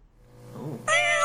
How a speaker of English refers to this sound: I can hear a cat.